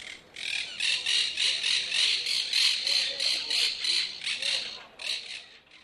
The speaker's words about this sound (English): that monk parakeet that I got the noise from was from Barcelona